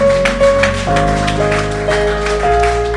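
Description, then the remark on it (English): A church crowd claps their hands for Jesus in a steady rhythm over sustained keyboard or organ chords, the sharp hand claps repeating evenly throughout. “Come on, just clap your hands for Jesus, somebody.”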